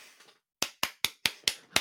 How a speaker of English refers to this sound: I might be the only applause, but that was a hell of an intro.